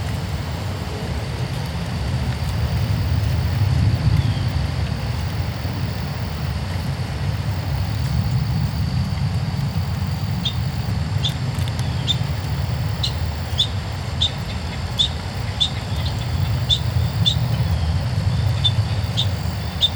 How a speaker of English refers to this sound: That was a field recording at Griffey Lake, fall of 2022. Wind in the leaves, a bird, let me know what kind, a plane overhead, and more.